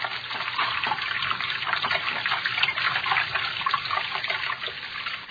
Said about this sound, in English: Water over my head. Filthy water. Pulling me under.